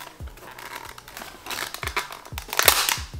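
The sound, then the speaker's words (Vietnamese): Repeated crinkling and ripping noises with dull thumps as someone struggles to pick sticky packing tape off a box with their fingernails while unboxing a product, growing louder and more forceful toward the end, with no talking. “Tại vì mình không gỡ ra được cái băng keo này.”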